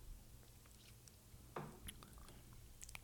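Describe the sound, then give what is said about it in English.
Quiet mouth noises of someone taking a sip of a drink, with a short wet slurp partway through followed by faint swallowing and lip clicks against low background hum. “Let me get one more sip. Sippy sip.”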